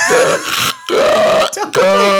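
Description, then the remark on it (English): A voice imitates a baby's breathing, which briefly stops, likened to a man with sleep apnea: three loud, strained snorting, grunting breaths separated by brief silent pauses, rough and throaty like choking snores. “They're literally like a guy with sleep apnea, like...”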